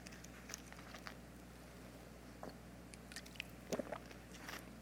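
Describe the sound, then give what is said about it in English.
Someone quietly takes a sip of water, with a few soft wet mouth clicks and a swallow over faint background hiss. No one speaks. “I'll take a sip of water.”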